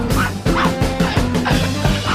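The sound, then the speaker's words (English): A dog barks in a quick, steady series of loud bursts, roughly four or five close together, filling the whole moment with no voices. “I mean, they just mean a dog, honey. A Mexican dog.”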